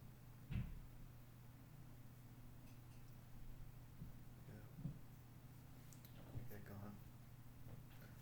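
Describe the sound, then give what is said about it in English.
Muffled bumps and faint, indistinct voices of people moving about outside a closed door, over a steady low hum; a few scattered quiet thuds. “People outside my door.”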